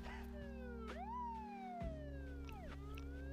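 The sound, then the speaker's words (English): Police sirens wail outside, their rising and falling tones overlapping as several pass by, with steady low traffic rumble underneath and no talking. “remember I had one version where you didn't even hear the sirens right. or the cars outside, but I think it's good that we do.”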